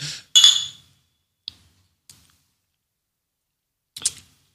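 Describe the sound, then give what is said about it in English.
Glasses clink together in a toast, a bright, close ringing clink, followed by a few faint small taps and a second lighter clink of glass near the end. “Let's try this stuff. All right. Cheers.”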